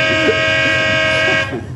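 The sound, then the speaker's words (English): Doc Jones's horn honks early in the morning in one long, steady blast with a bright, buzzy tone, then cuts off abruptly, leaving a low background rumble. “That crazy horn.”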